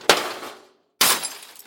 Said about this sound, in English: And so we thought, okay, what can we do to be 100% sure? And that's when we brought in the hammer and started smashing the stuff.